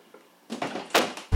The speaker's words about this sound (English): All right, leaving. This door really just doesn't open. Oh. All right, now I'm leaving.